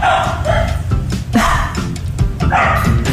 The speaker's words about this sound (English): Can you hear my dogs? Yes. Oh, my God. I'm worried my dogs might poo while I'm talking to you lot.